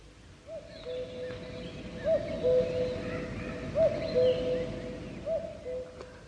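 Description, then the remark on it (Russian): A common cuckoo calls its two-note "cuck-oo" about four times at a steady pace in a quiet forest during a spring cold spell, over a soft constant background hum with no other birds joining in. “Одна кукушка кукует.”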